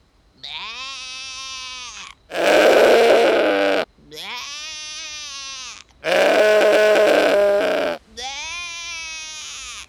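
A billy goat in a pen bleats loudly and raggedly, trading calls with a person imitating the bleat. The two alternate about every two seconds, with no pauses between turns.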